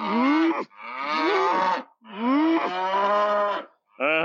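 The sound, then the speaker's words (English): A cow moos loudly, three long drawn-out bellows in a row with short gaps between them, and a fourth starting at the very end. No one speaks. “A cow took my iPod and I punched it.”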